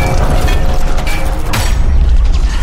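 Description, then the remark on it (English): A heavy door slams with a deep, booming impact about halfway through, followed by mechanical clanking as it locks, all over a loud, steady rumble. “Lock it down. Seal the door.”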